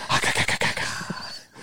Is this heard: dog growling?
yes